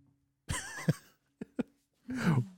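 A person coughs: a harsh, drawn-out cough, two quick sharp coughs, then another rough hacking cough, with brief silence between and no talking.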